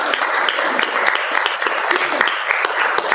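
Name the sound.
audience applause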